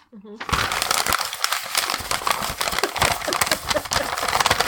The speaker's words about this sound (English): I really have to stop keeping paper just balled up in my pocket. It's so inefficient.